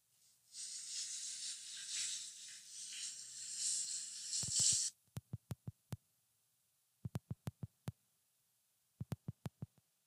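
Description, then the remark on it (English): A shower runs with a steady, bright hiss for several seconds, then the water cuts off abruptly over an unpaid bill, followed by bursts of sharp, low thumps in quick clusters with silence between them. “Hold on. The water stopped.”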